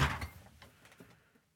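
A refrigerator door shuts with a single solid thump after covered pickle meat is put in to sit for 2 to 3 days, followed by a few faint rattles and clinks as the sound quickly dies away.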